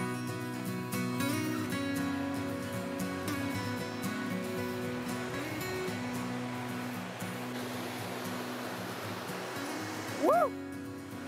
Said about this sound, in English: Now we're gonna go explore the Lacey Meadows. We'll go over the waterfall and see what this area has to offer.